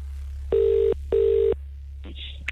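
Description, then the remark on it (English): A phone line rings twice in a quick double burst, the steady tone heard through the earpiece, followed by a faint click and rustle as the call is picked up, over a low hum. “We told you you need to answer the phone a certain way with a certain phrase, and you can't say hello or anything like that.”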